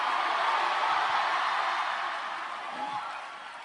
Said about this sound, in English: Clap your hands and scream hallelujah.